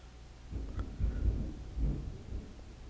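Low thunder rumbles in rolling waves, a deep swell near the start and another toward the end, with a faint background hiss and no voices.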